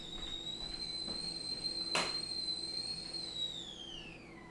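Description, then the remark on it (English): A tiny tea-party kettle whistles on the boil at home, a loud, steady high-pitched tone holding for several seconds with harmonics above it, then dipping slightly in pitch at the end. A brief burst of noise cuts in midway. “Oh, the kettle's screaming.”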